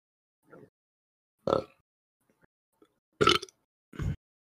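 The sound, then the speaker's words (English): A few throaty burps break up stretches of silence, the last two loud and drawn out, with a couple of faint clicks in between and no talking. “There's my burp.”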